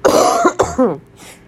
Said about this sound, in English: I feel like all this talking is triggering more and more coughs. I apologize for that.